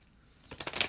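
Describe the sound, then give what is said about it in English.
A short, crisp flutter of shuffling Wisdom of the Trees Oracle cards, quick papery clicks starting after a moment of near silence, fairly soft, with no one speaking. “Let me give this another little shuffle.”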